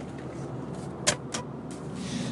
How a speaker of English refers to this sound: We are in the car